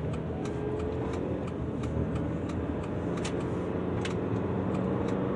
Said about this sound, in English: Like green light. Hurry up, truck. Hurry the fuck up!